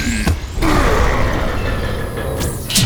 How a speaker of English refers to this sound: Okay, now shut the door! Leave it to me!